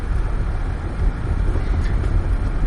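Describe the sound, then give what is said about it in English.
A car rolls steadily over a very narrow, one-car-wide dirt and stone road strewn with stones bigger than a fist, a continuous low rumble with a faint gritty crunch underneath and no voices. “Currently, for the listeners, we are on a very, very, like, one car narrow, almost as narrow as the streets of Atlanta, dirt and stone.”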